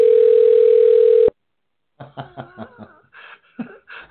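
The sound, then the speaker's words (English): A loud, steady telephone ringback tone of an outgoing phone call holds for just over a second, then cuts off abruptly. After a short silence, a voice starts speaking, slightly muffled as if over the phone line, as the call is forwarded to an automatic voice message system. “I'm actually really making a phone call.”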